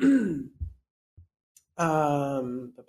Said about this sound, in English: And I occasionally still have a cough. I apologize, you guys.